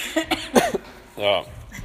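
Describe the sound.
A run of short, sharp coughs, three or four rough bursts in quick succession, followed by a brief voiced sound; a person coughing after doing a lot of running that day.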